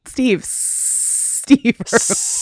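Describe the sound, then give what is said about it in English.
A person voices a long, steady hissing sound like a snake, broken by a brief burst of speech before the hiss resumes; fairly loud. “So the snake is finally can speak normal.”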